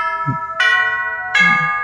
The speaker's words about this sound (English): And the bell rings.